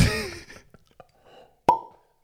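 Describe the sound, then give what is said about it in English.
A single crisp cork pop from a whisky bottle, sharp with a brief hollow ring, preceded by soft handling and scraping noises of the bottle being worked open. “Very decent pop.”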